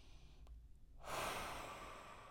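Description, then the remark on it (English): After a brief quiet moment, a single deep, airy breath rushes in and carries on steadily to the end, with no one speaking. “Let's take a deep breath together.”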